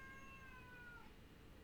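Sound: cat meowing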